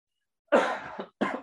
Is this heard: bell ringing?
no